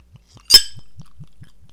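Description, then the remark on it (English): Pirate rum glugs out of a newly uncorked bottle as it is poured, in a steady run of low, hollow gulps, about five per second. A single bright clink of glass rings out near the start. “You heard the glug sound.”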